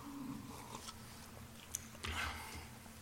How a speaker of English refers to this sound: I'll take a sip of water.